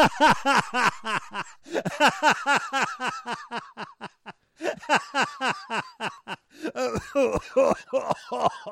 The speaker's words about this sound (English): Sorry about the coughing, folks, and stuff. No, don't apologise. People are used to it.